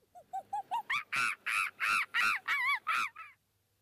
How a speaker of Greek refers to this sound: Η μαϊμού.